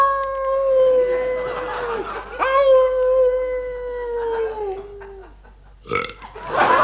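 Two long, loud, drawn-out burps after eating Brown Windsor soup, the second nearly three seconds, with a wavering tone almost like a howl, followed by a brief rough noise and another loud burst.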